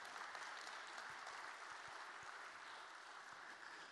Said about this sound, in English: Would you give a round of applause for our panelists this morning?